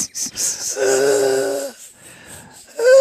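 Loud heavy breathing into a microphone with a whistling wheeze: short raspy breaths, then a long strained wheezy exhale, and another wheezing breath starting at the end. No talking.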